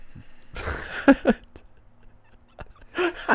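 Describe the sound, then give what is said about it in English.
A dog whimpers in a couple of short, whiny bursts separated by a quiet gap, with no one talking over it. “Also, the dog is probably the biggest reason of our edits.”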